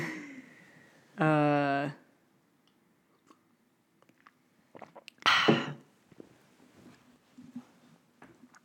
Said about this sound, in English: I've got the sniffles right now. Sorry, you guys, having ASMR of my freaking sniffs through the whole podcast.